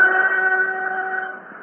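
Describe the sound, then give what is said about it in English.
The whistle of a night train to Norwich sounds in one long, steady tone, holding strong for over a second before gradually fading off, with no voices present. “A night train to Norwich.”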